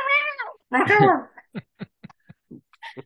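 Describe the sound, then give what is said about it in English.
A person imitates a cat with two drawn-out, wavering meows, followed by a string of short, quiet vocal clicks and murmurs. “Pounce right onto his back. All right. Ooh, parkour. Meow.”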